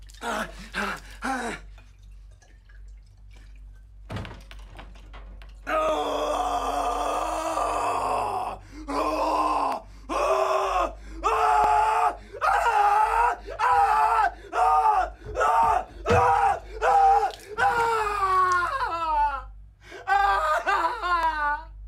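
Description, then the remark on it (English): In a film scene, a man with stab wounds screams in agony in long, ragged bursts while pouring vodka on his wounds and drinking it on a toilet, broken by sharp gasps and groans, loud, with harsh strained wails rising and cracking toward the end. “just starts screaming and like pouring it all over his like stab wounds and just chugging it and just sits down on the toilet and is like chugging vodka and screaming and just going back and forth between the two.”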